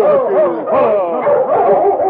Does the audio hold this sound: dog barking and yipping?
yes